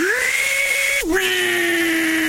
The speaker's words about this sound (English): Table saw.